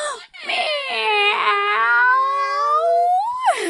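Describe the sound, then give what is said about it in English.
Several voices join in one long, loud imitation of a cat's meow, done as loud as they can on a count of three, a wavering, drawn-out cry lasting about three seconds that slides down in pitch and ends with a short rising squeal. “Meow. One more time. Make it the loudest time.”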